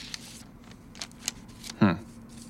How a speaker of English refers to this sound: I tear open the envelope, pull out the single sheet of paper, and scan the contents.